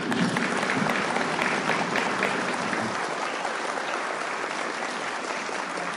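Steady audience applause, a dense wash of many hands clapping at an even loudness that thins slightly partway through but keeps going to the end, with no voices on top.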